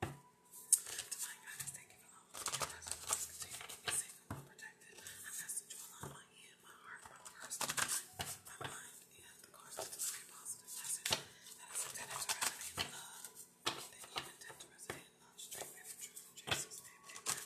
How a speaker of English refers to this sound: All right, so I'm shuffling the jar cards.